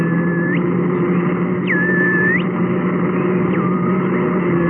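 A car engine drones steadily and loudly throughout as officers drive toward Jim Gordon's house with Geiger counters turned on, a dense low rumble, with a thin whining tone that rises, holds and falls away a few times over it. No one speaks.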